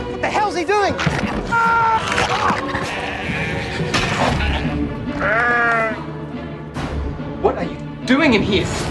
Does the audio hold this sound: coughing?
no